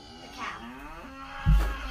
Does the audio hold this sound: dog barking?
no